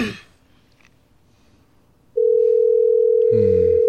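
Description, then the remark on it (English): After a couple of seconds of near silence, a loud, steady telephone ringback tone switches on and holds to the end, with a brief muffled voice sound overlapping it near the close. “All right, let's hope he answers. It's ringing.”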